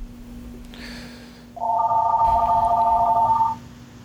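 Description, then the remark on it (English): A telephone rings once with a steady, bright electronic trill lasting about two seconds, clear over a quiet hum, after a brief faint tone. “Let me get that phone real quick.”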